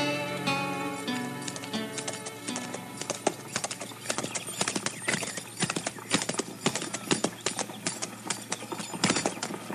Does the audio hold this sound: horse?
yes